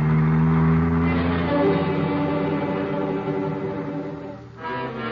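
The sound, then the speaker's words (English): A car engine hums steadily, its tone shifting as it drives along trailing another car, with a brief dip and then a renewed surge near the end. “For almost 3 hours, we trailed Crowder by car, never getting too near him”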